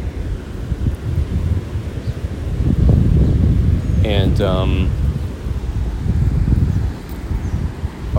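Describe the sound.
Wind at the beach rumbles and buffets steadily, swelling louder through the middle before easing slightly, with a brief spoken word and a short high tonal call breaking through partway.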